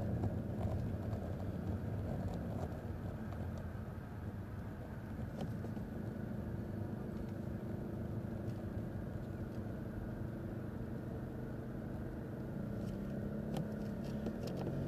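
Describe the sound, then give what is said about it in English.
The parents' truck engine rumbles steadily outside, a continuous low, throaty drone that holds at an even level throughout with no voices over it. “Heard mom and dad truck.”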